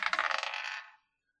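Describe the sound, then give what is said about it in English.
Dice rattle and clatter across a table as a player rolls an attack against chains in a game, a quick burst of bright, rapid clicks that slow and fade out after about a second, with no voices. “What I'm hearing is I'm going to roll an attack against the chains.”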